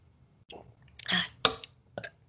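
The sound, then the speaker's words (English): A few small, short burps come up after taking a drink, one slightly fuller than the rest, separated by brief quiet gaps with no talking. “And they're all like tiny burps that don't do much relief.”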